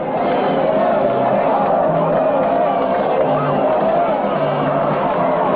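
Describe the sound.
A large crowd of fans cheers and roars continuously as a motorcycle rider lands cleanly on a landing ramp, the crowd jumping and clapping; a dense wall of overlapping voices and whoops with scattered clapping, loud throughout.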